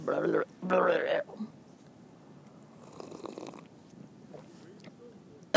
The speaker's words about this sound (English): Wow, sorry, I should know to not cough into the mic anymore because the last episode I edited out a good 60 seconds of coughing. And there was still some left in there just for fun.